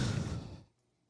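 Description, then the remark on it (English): A person breathes into the microphone: a single breathy gust of air for about half a second, a loud rushing exhale that cuts off abruptly into near silence. “Yeah, I can hear you breathing in it.”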